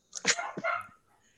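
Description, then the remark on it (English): A couple of quick, sharp dog barks, one right after the other, then quiet. “The dogs are doing it.”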